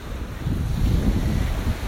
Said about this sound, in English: So here's the sea, listen to it. Can you hear it?